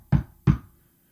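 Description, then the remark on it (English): Two firm, loud knocks on an apartment door in Los Angeles on New Year's Eve morning, with a hollow low thump to each and a brief pause between them, then silence. No voices. “I came back to LA for New Year's, and New Year's Eve morning, I got a knock on my apartment door.”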